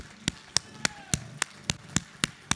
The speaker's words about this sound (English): You know the wonderful thing about that spontaneous hand clap? The Bible says that when even one comes to know Jesus, the angels of heaven rejoice. So actually, you, when you started clapping your hands, you were just joining in